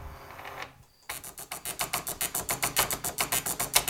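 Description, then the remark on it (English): An old dot matrix printer, fed with paper that has holes along the sides, chatters through its job, a fast, steady run of harsh buzzing bursts about five per second after a brief pause, with no voices. “Well, this is an old printer. An old printer with like the holes in the sides of the paper that feed it forward.”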